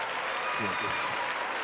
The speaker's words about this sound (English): Clap if you hate that, women. Do you hate that?